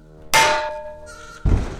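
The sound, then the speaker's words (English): A frying pan hits someone in the head: a sharp metallic clang rings out with a sustained, bell-like tone that slowly fades, followed by a heavy, dull thud. No one speaks. “I think you accidentally hit me in the head with a frying pan.”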